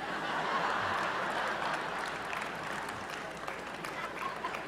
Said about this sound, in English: a lot of white people here, you all even clap on beat.